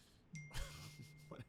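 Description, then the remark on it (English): A short electronic phone notification ding, a bright high tone that rings briefly and then fades under a low steady hum and some muffled background noise. “Can you silence your phone, please?”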